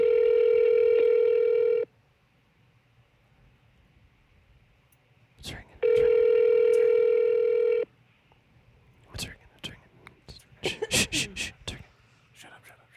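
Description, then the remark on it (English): Two long ringback tones on a phone line as a call is placed to Jason Jewelers in downtown Cape, each about two seconds with a pause between, followed by clicks and a burst of faint, muffled noise as the call connects. “All right, we're ringing. It's ringing.”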